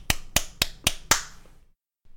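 Five sharp hand claps in a quick, steady rhythm, each bright and crisp, with the last one ringing out briefly before silence; recorded in Audacity during a Discord call whose noise gate muted it.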